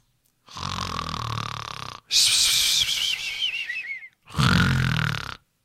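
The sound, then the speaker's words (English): Someone fakes loud snoring: a rumbling inhaled snore, a whistling, wheezy exhale, then another deep rattling snore, with no talking. “And awakeness, and wow, an improvement twofold of our snoring abilities since the last night. That's some good snoring you did there,”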